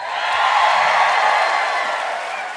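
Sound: audience applause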